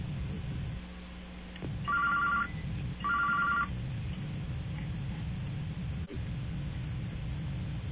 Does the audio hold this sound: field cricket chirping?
no